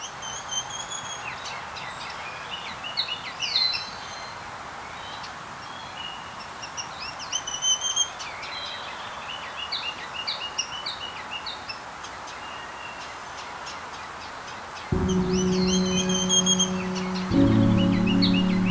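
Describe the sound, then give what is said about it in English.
A ruby-crowned kinglet, a tiny greenish-gray bird with white wing bars, sings thin, high, rapid twittering phrases, repeated several times. Near the end a steady low droning hum comes in beneath the song. “The ruby-crowned kinglet is a tiny greenish-gray bird with white wing bars and a ton of energy.”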